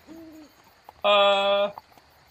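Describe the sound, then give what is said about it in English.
A person imitates a screaming crow with a single loud, drawn-out, raspy cry lasting over half a second, preceded by a brief soft hooting tone. “Despite the fact that there's a crow who's screaming during it, he's a very never.”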